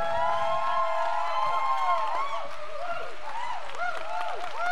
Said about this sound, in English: So come on right now. Would you give a huge cheer, a huge FLC welcome